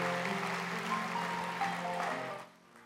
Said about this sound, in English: Let's give these folks a round of applause, giving thanks to God for them.